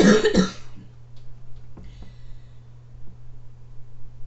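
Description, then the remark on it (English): A short, harsh cough from a scratchy throat bursts out at the start, a couple of rough throaty pulses, then fades into quiet with only faint small clicks and a steady low hum underneath. “Sorry, I have a little bit of a scratchy throat.”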